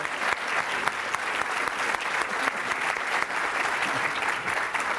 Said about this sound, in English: I would love to invite everyone to give our astronauts a round of applause. They're true American heroes.